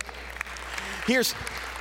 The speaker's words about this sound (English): Oh, come on, give him a hand clap.